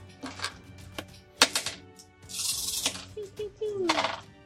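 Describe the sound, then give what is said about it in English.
Attack dice clatter across a tabletop in a few quick bursts of sharp clicks and rattles, fairly loud, as players roll off in a game, while people talk softly in the background. “Everybody roll off. What are you rolling? My attack dice.”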